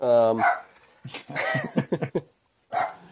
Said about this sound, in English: Sorry about that. The dog's going nuts.